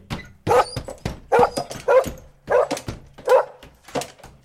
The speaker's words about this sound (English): A passerby heard the barking and stopped in surprise.